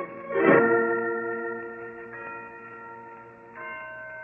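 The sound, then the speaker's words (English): The historic Blandford church bells ringing from a bell tower, with three strikes about a second and a half apart. Each rich, resonant tone hangs in the air and overlaps the next, with no voices. “Listen to those bells, Holmes.”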